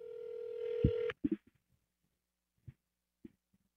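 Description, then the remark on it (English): A steady electronic telephone tone hums for about a second as a call is placed to wake someone up, then cuts off abruptly, followed by a couple of handset clicks and a few faint, scattered taps in near silence. “She's going to love this call right now.”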